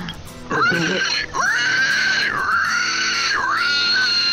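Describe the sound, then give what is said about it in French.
A person imitates a sow with long, loud, high-pitched squealing wails, about four sustained cries that swoop and dip in pitch, with no talking over them. “C'est la truie que tu fais, là, c'est pas le cochon, c'est la truie, ça.”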